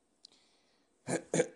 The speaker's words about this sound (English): And I have to clear my throat on this, so LeBron breaks Jordan's record by scoring in double digits in his 867th straight game as the Cavs down Pelicans 107-102.